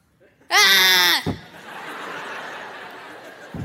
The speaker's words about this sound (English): I need you, if you were to be swimming in the ocean and you saw a shark, I need you to make the noise that you would make. Okay. Not in a cage. Okay. I need to hear your best shark scream.